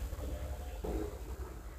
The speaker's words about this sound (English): Excuse my neighbor. He's got a loud farting car.